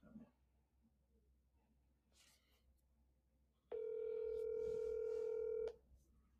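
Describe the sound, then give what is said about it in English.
A phone line rings once with a single steady electronic tone lasting about two seconds, loud and clear, after a stretch of faint background noise. It is a phone call placed live to a friend to get a Super Bowl pick. “He said he can't, but I said it's literally just a 2-minute phone call.”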